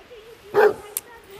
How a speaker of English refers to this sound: Oh, really cute dogs are barking at me.